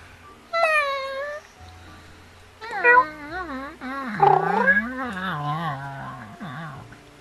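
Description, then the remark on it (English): A cat meows: one short, high meow, then a long, drawn-out wavering yowl whose pitch rises and falls for several seconds. No one is talking. “It was a stupid cat, sorry.”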